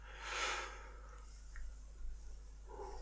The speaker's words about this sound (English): Ooh, a little yawn. Ooh, had a late night. That's why.